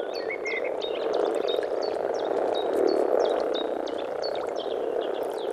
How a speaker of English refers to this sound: This throaty rumbling might not get the hearts of female listeners beating any faster, but if you're a common frog, it's like a siren call.